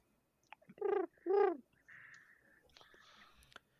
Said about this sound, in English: makes her way over to where the mysterious bird noises were coming from.